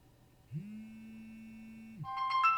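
A mobile phone goes off: a steady low buzz hums for about a second and a half, then a bright electronic ringtone starts chirping in quick repeated notes.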